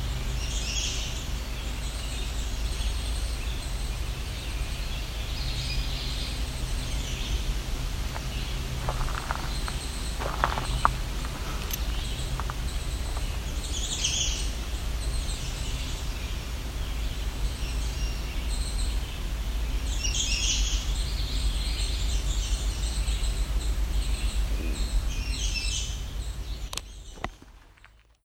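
Songs of a red-eyed vireo, common yellowthroat and American redstart come in repeated bright, high-pitched phrases over a steady low rumble, with a few soft crunching footsteps midway.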